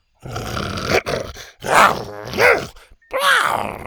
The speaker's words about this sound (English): With an irritated growl, Buck glanced between Scoot and the next obstacle, then bit onto her horn and pulled her to her feet.